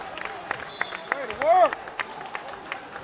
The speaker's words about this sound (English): Draws applause from the Siegel fans here on the near side.